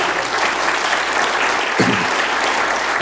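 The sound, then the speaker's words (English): An audience breaks into sustained, dense hand clapping as praise to God, a loud steady wash of many hands with no individual claps standing out, continuing through the whole moment. “If you believe that, will you give God a hand clap of praise tonight?”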